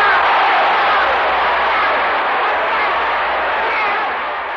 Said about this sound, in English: You'll hear then bedlam, just people shouting and yelling, and it goes on for several minutes like you'd hit a home run.